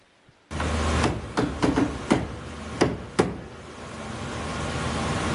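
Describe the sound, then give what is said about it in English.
A series of sharp knocks on the surface where an object rests, made while recording a video to make the object vibrate, about seven irregular bangs over a few seconds, some louder than others, over a steady low background hum. “So to make that happen, we're just going to bang a little bit on the surface where it's resting while we record this video.”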